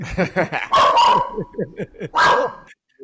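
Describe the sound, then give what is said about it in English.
A dog in a New York City apartment with a lot of construction going on barks loudly twice in close succession, sharp and excited, while a person talks over the noise throughout. “And so his dog's going absolutely crazy.”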